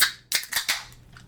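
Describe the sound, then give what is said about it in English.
Cans of El Matador Purple Corn Cerveza from Parallel 49 cracking open: a quick run of sharp, hissy pops, several in close succession. Each pop trails a short fizz that fades out, with no talking. “Well, let's crack these open.”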